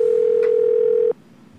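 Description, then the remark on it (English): A telephone ringback tone while a call connects: one steady, clear electronic tone holds for about a second, then cuts off abruptly into quiet line hiss. No one speaks. “Ringing.”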